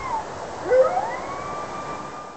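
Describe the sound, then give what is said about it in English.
A red wolf, a much smaller wolf species from the southeastern United States, howls, a fairly high, wavering tone that swoops upward and then holds and slowly bends, with faint overlapping tonal lines over a soft hiss and no talking. “And to compare that, this is the howl of a red wolf, which is a much smaller species from the southeastern United States.”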